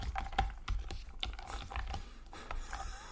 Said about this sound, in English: What are you doing? I'm mixing my yogurt up with some nut. Well, what did you think I was doing? It sounded like you were slurping a drink.